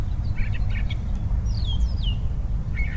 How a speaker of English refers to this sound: You can tell by the sounds of the birds singing spring has definitely sprung in our neighborhood. I'll just let you hear that for a second there.